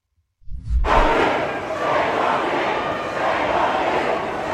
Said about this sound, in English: This is a giant crowd of pro-Hamas protesters who are following a member of the government. The police are trying to spirit this member of government away.